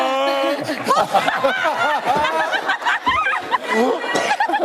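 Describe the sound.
A woman, judge Julianne Hough, gives a snorting, snickering laugh as she judges a dance, amid a busy mix of overlapping voices and chatter, with bursts of chuckling running throughout the few seconds.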